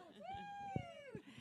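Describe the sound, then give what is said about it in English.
A single drawn-out cat meow in a backyard, fairly loud, with a rising then falling pitch lasting over a second, accompanied by a few soft low thumps. “And we are in my backyard right now and my kitty almost just flew out of the house and into the yard because this podcasting situation is so fun.”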